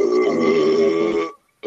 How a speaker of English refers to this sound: That was a good belch. That was.